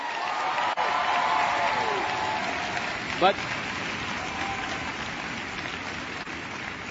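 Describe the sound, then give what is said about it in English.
A New Attitude audience claps steadily for several seconds, a dense, even patter of many hands at constant volume, with a single short spoken word cutting in briefly midway. “New attitude folks are supposed to really clap at that point.”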